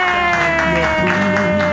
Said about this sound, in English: If you loved it that much, clap wildly.